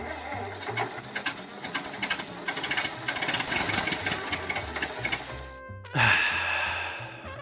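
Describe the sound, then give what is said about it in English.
A small antique car's 4-horsepower engine is started and chugs and putters in a quick, steady rhythm, its sound shifting and brightening briefly near the end as it keeps running. “Well, it's not like I'm going to many places on modern roads, anyway, with a 4-horsepower engine.”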